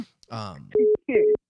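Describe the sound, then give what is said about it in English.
A phone call disconnect tone after the caller hung up: a series of short, loud, identical electronic beeps evenly spaced, following a brief burst of someone talking, with a voice briefly overlapping one beep. “hung up again.”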